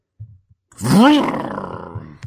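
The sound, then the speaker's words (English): A voice imitates the car engine noise that a limited edition Forza 6 Xbox One makes when turned on: one loud, growling vroom that rises sharply in pitch, falls back, and trails off, after a couple of short low grunts. “Limited edition Forza 6 Xbox One will make car noises when you turn it on.”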